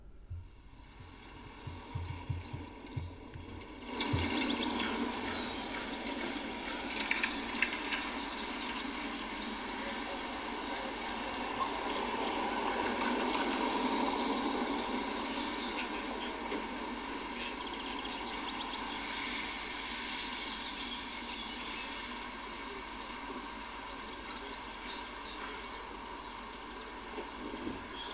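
Outdoor ambience of an English village cricket match on a spring day, with old British cars passing and a pub nearby: a steady, airy wash of background noise with faint scattered knocks and rustles, swelling after a brief quieter opening and continuing evenly throughout.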